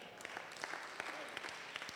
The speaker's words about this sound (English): Is it that you clap a lot here, or I'm preaching good? which one is it? I'm a little confused.